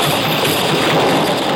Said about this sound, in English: Then I saw it. Something awful big coming at me. It was the bus rolling downhill, heading straight for me.